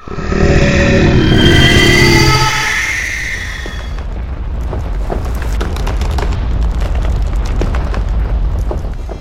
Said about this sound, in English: And the next morning, you're all awakened to the sudden shaking of the earth, a loudening roar, and and what sounds like the collapse of a building.